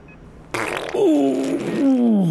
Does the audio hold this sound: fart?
yes